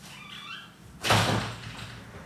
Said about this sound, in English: Hold on, let me close this door.